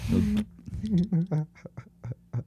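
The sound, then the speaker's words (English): Birds screaming loudly: a harsh opening squawk followed by a rapid string of about eight nasal, quack-like cries that gradually grow shorter and fainter. “I love the birds. The birds are so cute.”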